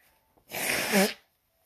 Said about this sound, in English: Oh, hold on, I gotta blow my nose.